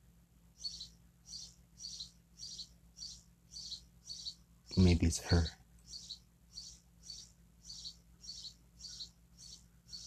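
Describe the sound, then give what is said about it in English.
A very loud bird right outside a window chirps repeatedly in a steady, rhythmic series of short high calls, with a brief burst of talk in the middle and a low background hum. “I hope I am coming loud and clear, because there is a very loud bird right outside of my window.”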